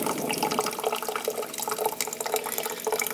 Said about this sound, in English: And I'm putting this on the hot water side, and I'm pushing the button to take it off safety. And voila, getting hot water in this lovely coffee press. And the pump is now turned on to get more water up.